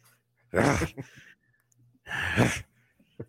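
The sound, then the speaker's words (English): A voice imitates Vince McMahon's heavy, excited breathing on seeing a woman: two loud, drawn-out breathy huffs about a second and a half apart, each trailed by a shorter gasp, with no words spoken. “The breathing.”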